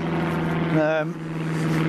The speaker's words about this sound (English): There's a plane above. Trouble is full of planes, yeah. And it's just full of planes round here.